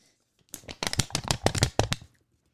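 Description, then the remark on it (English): Crisp paper snapping and crackling as it is handled, a quick run of sharp rustles lasting about a second and a half before falling silent. “The paper what snaps.”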